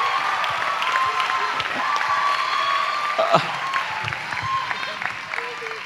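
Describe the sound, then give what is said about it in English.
A crowd applauds a group introduced as the fifth generation, a dense continuous patter of many hands clapping at an even level for several seconds, with a few voices and cheers mixed faintly underneath. “Will you give the fifth generation a big clap?”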